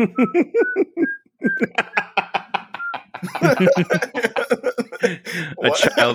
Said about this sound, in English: Someone is whistling the opening of that.